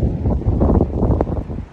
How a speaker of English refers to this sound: It's a little windy again. I don't know how this is sounding, but I hope you're catching this message. I hope it's not too much of a distraction.